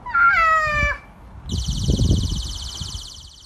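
A cat gives one drawn-out meow, then a shrill, steady high-pitched alarm tone starts and keeps sounding without a break over low rustling noise. The alarm was recorded on video at a home in the southeast community of Chaparral.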